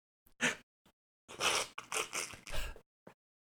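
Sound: sniffling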